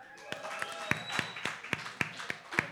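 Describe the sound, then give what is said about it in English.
A comedy show crowd claps in a steady, even rhythm, about nine sharp claps spaced evenly, with faint voices calling out underneath at moderate volume, as audience members who ride the train answer the comedian's call to make some noise. “take fucking limos, because everybody else clap”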